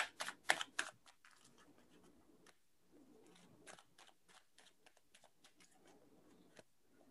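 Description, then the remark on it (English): Tarot card shuffling: a few loud, crisp riffling bursts at the start, then a long run of softer, irregular flicks and taps as the cards are mixed, with no voices. “Okay, I'm going to start shuffling now.”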